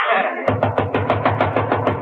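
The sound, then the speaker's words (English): A quick, steady run of about ten sharp, fairly loud knocks on a door, starting right after a short sustained voice-like tone. “Hey, sound man, that's probably my lawyer. Let him in.”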